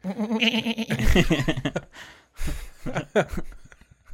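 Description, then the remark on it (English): A person imitates a goat, letting out a series of wavering, nasal bleats, followed by a few more short, shaky bleat-like cries after a brief pause. “Do we even know that there was an actual goat? I don't know. I'm just doing that.”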